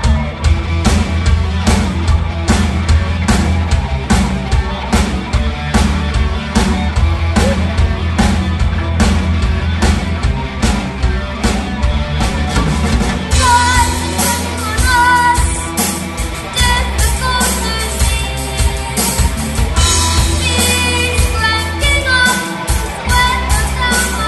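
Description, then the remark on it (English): A band plays its own original song, the very first song the band wrote: loud and full, with steady drums and dense guitar and bass throughout, moving into a brighter, busier section about halfway through before the low end briefly drops out near the end. “Our song we're going to play is ….”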